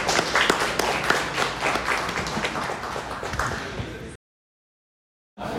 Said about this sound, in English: Give you another round of applause for our finalists.